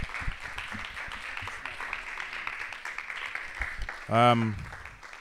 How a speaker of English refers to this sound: All right, could we just give them a round of applause?